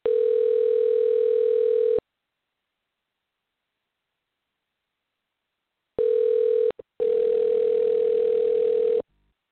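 A steady, loud telephone dial tone, heard while dialing back in from a remote phone, plays for about two seconds, stops for a long silence, then returns in a short burst and a longer, slightly noisier stretch. No one speaks.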